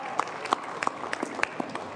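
A crowd applauds steadily as a contestant comes up to the stage at a judged competition: a dense patter of overlapping claps with a few sharper hand strikes popping out above the wash, moderately loud and with no voices.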